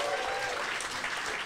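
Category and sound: crowd, audience applause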